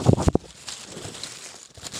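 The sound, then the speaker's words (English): A crunchy, crinkling ASMR sound effect opens with a few loud, sharp crunches, then settles into a softer, steady crackle of crinkly rustling for the rest of the two seconds, with no talking. “Oh, crunchy, crunchy, crunchy, crunchy. We do love some ASMR.”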